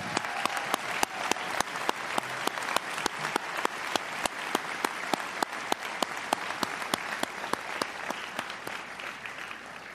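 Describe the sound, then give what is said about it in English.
An audience applauds a choir steadily for about ten seconds, many hands clapping in a dense, even patter with a few sharper claps standing out and no voices on top. “Another round of applause for that fine choir.”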